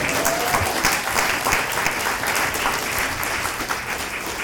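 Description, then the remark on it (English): An audience at a panel discussion claps for the panelists for several seconds: a dense, even wash of many hands with no pauses or speech breaking through. “These are fantastic people that I'm even learning from in this moment, so just more clapping.”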